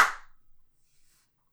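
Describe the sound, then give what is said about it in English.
A single sharp hand clap, crisp and fairly loud, with a short ringing decay that fades into near silence. No voices are heard. “I had a moment of panic leading into that because I was thinking about clop and saying clop, and then I was like, wait, no, you have to clap with your hands.”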